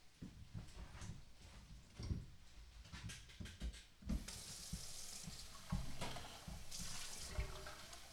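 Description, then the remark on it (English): Local tap water runs steadily from a faucet into a glass, a broad hissing splash with a few clinks and knocks early on, the flow growing brighter and fuller partway through before easing near the end. “And now for a glass of our local water.”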